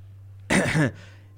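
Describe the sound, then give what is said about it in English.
One short cough given for the character Garrick, with a rough, throaty edge, almost like a throat clear, lasting under half a second over a faint steady background hum. “Garrick's gonna give a little cough.”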